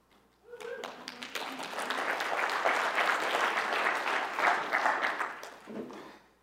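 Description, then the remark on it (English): An audience breaks into sustained applause for a couple married 37 years, a dense wash of many hands clapping that swells quickly, holds for several seconds, then tapers off near the end. “Why do people always clap when somebody's been married for a long time?”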